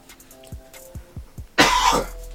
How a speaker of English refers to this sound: Luckily, this is only happening at the end that I'm coughing.